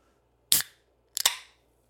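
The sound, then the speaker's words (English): A drink can is cracked open: a sharp metallic snap, then a second crack with quick clicks that trails into a short hissing fizz. It is loud and stands alone with no talking. “I love that fizzle at the end.”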